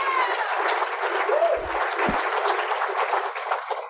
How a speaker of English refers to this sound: Let's give this man a big round of applause, too.